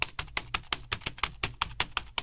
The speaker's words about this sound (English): That was me actually typing on my keyboard, and now I'm going to need a new keyboard.